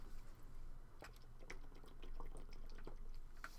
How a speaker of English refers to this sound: I'm sorry, this has become like an accidental ASMR. Or to those who hate mouth noises and drinking and all that, I'm so sorry.